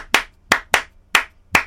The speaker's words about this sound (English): So it's a wonderful piece, Clapping Music. It's just a very simple pattern, which is this.